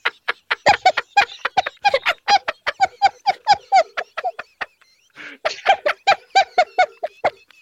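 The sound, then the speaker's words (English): Loud goose honking in a rapid, steady string of nasal calls, breaking off briefly partway through before another burst of honks follows. “It's a goose remover. So really take care of your goose problem.”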